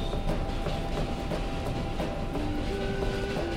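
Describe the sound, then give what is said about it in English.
A 7 subway train rumbles steadily along the tracks, loud, with scattered clacks of the wheels and a thin, rising motor whine near the end. No voices. “Take The 7 Train”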